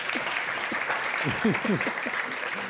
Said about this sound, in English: All right, that ends our lightning round. Let's give them a round of applause for getting through that.